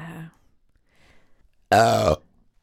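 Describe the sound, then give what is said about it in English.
A single loud, throaty burp bursts out, lasting about half a second, just after a brief trailing bit of voice and a moment of near quiet. “I know some people don't like burps.”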